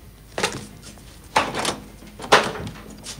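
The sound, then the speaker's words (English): A door is opened with a few sharp, clattering knocks and rattles, spaced about a second apart, moderately loud, with no one speaking. “Let's open that door.”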